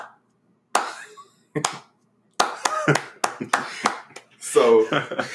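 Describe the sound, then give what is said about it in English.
Slow hand claps, widely spaced at first and then coming a little faster, sharp and fairly loud, with voices calling out and cheering over the later claps. “It's supposed to slow clap at first.”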